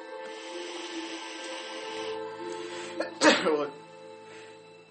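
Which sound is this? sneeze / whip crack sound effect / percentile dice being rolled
sneeze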